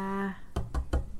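A short hum of a voice trails off, then three firm knocks on a tabletop for good health follow in quick, even succession, fairly loud.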